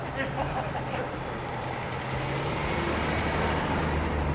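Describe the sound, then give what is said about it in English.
A vehicle engine rumbles low and steady as a car comes through a noisy crowd at a 2022 event in Iowa, with indistinct voices and general bustle filling the background throughout. “Car coming through. Let him through, please.”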